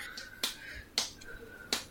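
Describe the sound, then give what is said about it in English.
Three sharp skin-on-skin slaps of a head against a stomach land at uneven intervals, each a crisp smack over a faint steady hum, with no talking. “There's a lot of skin slapping against skin and I'm uncomfortable.”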